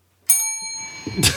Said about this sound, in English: And I'm going to ring my own damn bell.